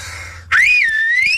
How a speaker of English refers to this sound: Can you do the finger in your mouth whistling? Not at all. Oh, listen, hang on. I've got to go away from the mic for this. Hang on a second. I'm good at this. My wife gets me to do this at gigs, because she